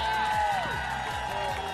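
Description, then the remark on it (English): A poolside crowd at the Now Amber Resort in Puerto Vallarta, Mexico, claps and cheers for Apple Vacations, with a few whoops rising above the steady, dense applause, fairly loud and continuous throughout the short burst. “How about a big round of applause for Apple Vacations, too?”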